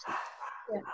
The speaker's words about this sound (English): Seven in the kitchen. Dogs. Seven dogs in the kitchen.